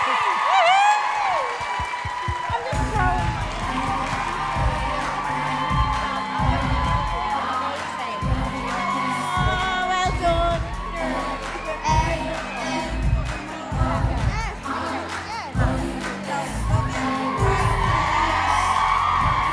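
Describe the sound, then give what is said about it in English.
A live show crowd cheers loudly for the whole stretch, giving a round of applause, with high whoops and shouts over steady, rhythmic clapping that starts a few seconds in and keeps a driving beat. “Can we give a huge round of applause to Miss Sophie?”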